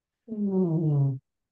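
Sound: cat purring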